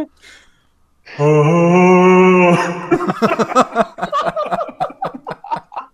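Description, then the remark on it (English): A voice loudly hums one steady, held note in imitation of the Halo video game theme, then breaks off after about a second and a half into several seconds of rhythmic, choppy laughter. “Oi, do the Halo theme.”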